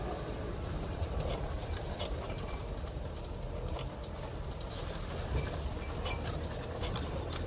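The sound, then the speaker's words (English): Steady, loud low rumble of a Land Rover about 25 years old with no weather seals driving on a road, with a constant engine drone and scattered light rattles and ticks throughout, and no one talking. “We're in a Land Rover that's probably about 25 years old.”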